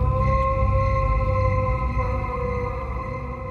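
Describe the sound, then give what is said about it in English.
A long, drawn-out howl from a man standing upright by a river in a clearing by trees, head tilted backwards, holds a steady, eerie pitch for several seconds, loud and unbroken over a low rumbling background, with no one talking. “standing upright by the river, his head tilted backwards as he let out another long, blood-curdling howl.”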